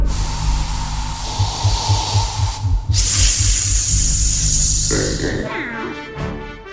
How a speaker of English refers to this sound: Well, luckily I have a can of cat repellent spray.